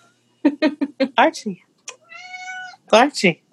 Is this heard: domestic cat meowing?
yes